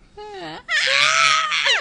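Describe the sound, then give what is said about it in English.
A yawning scream: a stretched, gliding vocal cry that starts lower and rises into a loud, strained, high-pitched screech, held for over a second before trailing off, alone. “Are you doing your yawn scream like Quentin?”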